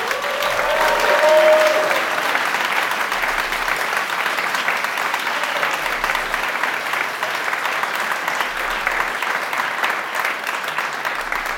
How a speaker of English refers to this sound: Thank you for listening and watching, and to the audience in London, please give yourself a round of applause.